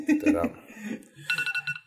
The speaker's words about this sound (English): It's the alarm for the podcast because I thought it would have been 2:30.